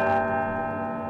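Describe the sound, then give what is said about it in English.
A large historic tower bell of Albany City Hall is struck once and its rich, layered tone rings out loud and steady, slowly fading over about a second, with no voices present. “the historic bells of Albany City Hall.”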